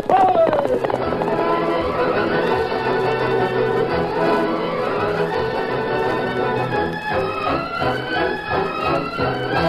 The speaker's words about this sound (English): From out of the past come the thundering hoofbeats of the great horse Silver. The Lone Ranger rides again.